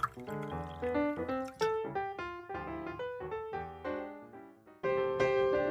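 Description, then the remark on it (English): A double drink is poured into a glass with a bright, ringing gurgle whose pitch climbs as it fills, in a few steady streams with brief pauses between them and no voices. “Go pour yourself some dinner. Sure. You want any? Make mine a double.”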